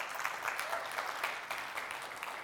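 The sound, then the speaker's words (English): Steady applause from a crowd, a dense, even wash of many hands clapping with no voices, holding at a constant, fairly loud level throughout. “Give him a round of applause. Go ahead and do that.”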